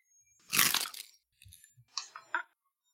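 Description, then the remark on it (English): A loud crunching bite into crisp pizza crust, the bottom and top crunching at the same time in a broad crackling burst, followed by a few smaller crackly chews and soft mouth sounds. “You could hear the double crunch. You could hear the bottom and the top crunch at the same time.”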